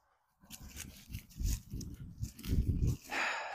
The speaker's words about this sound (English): It's going to be an exhilarating part of the recording here. Just a lot of leaves crunching.